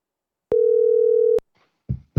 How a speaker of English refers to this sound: It's ringing.